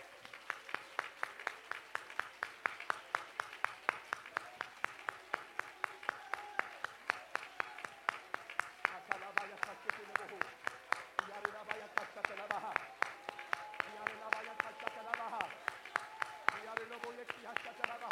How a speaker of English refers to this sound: I want you to clap your hands for just a moment in this house.